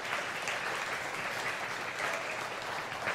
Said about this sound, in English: I think we should clap there. I think that's really good.